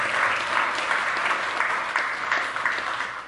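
An audience applauds steadily after hearing how many people volunteer in its ministries, a dense, even wash of many hands clapping at moderate loudness with no voices rising above it.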